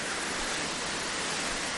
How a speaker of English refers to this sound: But I'm sure you can pick it up on the mic. Crazy fast water.